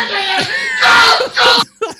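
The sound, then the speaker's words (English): A man loudly imitates a frightened scream in a few strained, high-pitched vocal bursts, cutting off abruptly with a short final yelp. “With that, this thing jumps off the top of the elevator on top of him. He screams like...”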